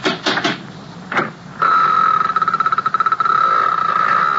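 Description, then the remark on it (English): Four heavy, resonant knocks from a huge brass door knocker on a door with no bell, during a thunderstorm, irregularly spaced, followed by a steady, high-pitched ringing tone with a rapid fluttering pulse. “There was no bell, but there was a huge brass knocker. No answer.”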